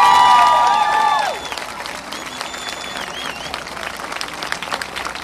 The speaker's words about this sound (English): What about a clap for the elders who paved the way for us?